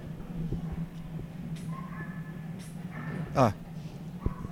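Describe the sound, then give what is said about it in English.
A dog at a dog trainer's in the building gives a short yelp-like bark and some faint whimpering over a steady low electrical hum and indoor background noise. “A dog trainer in the building.”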